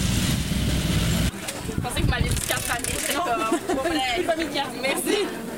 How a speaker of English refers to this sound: And here comes another one. That sounds like a Harley coming. It's a dirt bike, Dad. This one? Well, it's one dirt bike, one Harley.